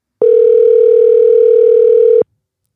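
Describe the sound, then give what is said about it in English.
A phone ringback tone sounds once while calling someone's dad, a steady, loud electronic hum lasting about two seconds with clean edges, heard on its own with no voices. “All right, I'm calling your dad, who is fine with letting a wet nasty on a toddler's head.”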